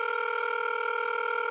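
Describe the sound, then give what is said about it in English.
A steady electronic ringback tone from an outgoing phone call to Senator Braun of Indiana hums continuously at an even level, clear and unbroken, with no voices present. “Thanks for answering the phone.”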